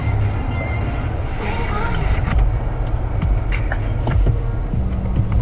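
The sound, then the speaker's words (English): A steady, loud low rumble of road traffic, cars rolling past in intermittent rain, continues without a break, with muffled voices faintly underneath. “Because he was avoiding cars.”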